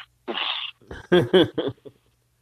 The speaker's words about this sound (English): Yeah, I coughed up on some fucking roast that my roommate made earlier. Yeah. It was a little bit dry. That was one of my after lunch coughs.